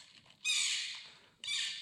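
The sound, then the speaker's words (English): A porcupine lets out two long, shrill squealing cries in quick succession, fairly loud, with a brief pause between them and no talking. “This porcupine has been asked to leave the Michaels for not wearing a mask.”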